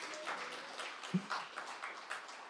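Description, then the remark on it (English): An audience claps together in a steady, dense, soft patter, filling the whole moment without any speech. “that was a good place to clap, and everyone else will clap with you.”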